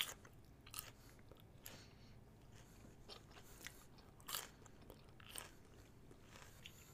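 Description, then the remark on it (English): Close-up chewing with a series of crisp crunches every second or so, irregularly spaced over a soft, low rumbling background; no one speaks, and the mouth sounds are intimate rather than loud. “As the title no doubt advertises, this is an episode of purely ASMR chewing.”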